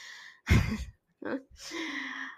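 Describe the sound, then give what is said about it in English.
Breathy sniffing by a cat right against the microphone at night: a loud, rough snuffle followed by two softer, airy puffs of breath, with no talking. “My cat is sniffing the microphone right now.”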